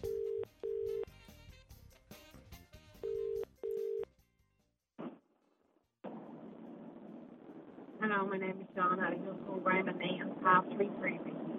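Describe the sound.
A telephone ringback tone purrs in two double-pulse rings as the FM 104 radio freebie show calls a listener from a private number, then a click as the call connects, followed by line hiss and a person starting to talk.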